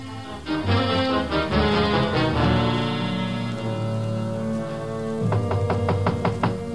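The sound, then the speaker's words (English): Repeated knocking on a locked door, with sharp raps in two bursts at the start and near the end, over a loud, sustained musical score. “Just a moment, please. I'll be right there. Sorry to have locked the door”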